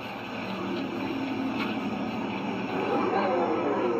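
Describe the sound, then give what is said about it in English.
An electric Dodge Charger SRT car engine rumbles steadily for four seconds, a loud, grainy drone with a growling tone that swells and rises slightly in pitch near the end, like revving. “That sounds like a fucking cat. When it's like, it has the rumble in it.”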